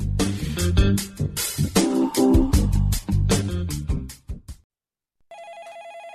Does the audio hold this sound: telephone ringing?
yes